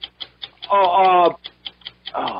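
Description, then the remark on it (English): A game-show clock timer ticks steadily and quickly, about five ticks a second, counting down 45 seconds during a sports trivia quiz, while a loud voice briefly rises over it and another burst of sound cuts in near the end. “45 seconds on the clock.”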